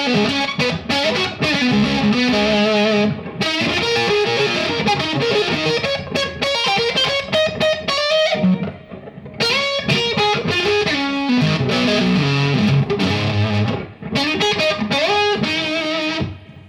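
A distorted electric guitar plays busy riffs and chords with a bright, cutting upper edge, its tone control turned all the way up past the 12 o'clock position to boost the higher frequencies for more presence; loud and continuous with brief pauses between phrases; no one speaks.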